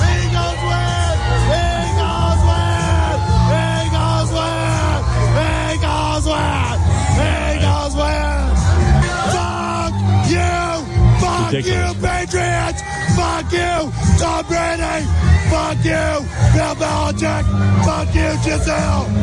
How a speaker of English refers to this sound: screaming when the Eagles won the Super Bowl.